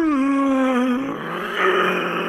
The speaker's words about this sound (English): A horrific shriek.